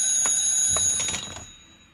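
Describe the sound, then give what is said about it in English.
A telephone rings at Lorca's Pastelleria with a bright, metallic bell tone, pulsing in rapid strokes before trailing off and fading out toward the end. No voices are heard. “I may speak to the phone.”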